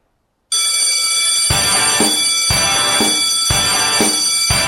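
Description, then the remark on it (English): A loud bell rings alone with bright, sustained metallic tones, struck again roughly once a second so each new strike lands on the lingering ring of the last. “That bell means it's 20 after.”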